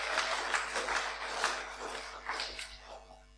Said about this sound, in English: Yeah, give them a clap. Go on, give them a clap.